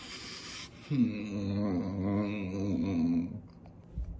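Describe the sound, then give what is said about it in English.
One drawn-out, wavering wail of exaggerated, theatrical fake crying, acted for a filmed scene, fairly loud, sustained for a couple of seconds before breaking off, with no other talking. “could you try and act a little bit more real when you're crying?”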